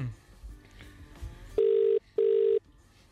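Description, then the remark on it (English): A telephone ringback tone: two short, steady electronic buzzes in quick succession, loud and clear, heard over the line while a call to a father is placed, with faint background murmur before it. “I'll just get him on the phone.”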